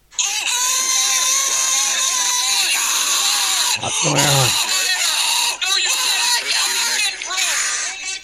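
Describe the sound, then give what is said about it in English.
A scream sound effect played from a soundboard app: a loud, continuous chorus of shrill screams and shrieks from many voices, with one sharp, piercing scream swooping down in pitch midway through. “I also have Scream.”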